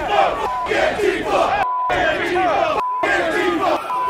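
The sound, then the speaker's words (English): A large crowd of Trump supporters advancing on the Capitol shouts and chants together, loud and dense, with many overlapping voices; brief dropouts cut the roar twice before it resumes. “With those orders, the crowd of economically anxious insurrectionists advanced on the Capitol.”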